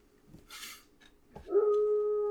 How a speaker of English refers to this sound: That one's just a wolf. Awoo. Say awoo like the wolf, you know.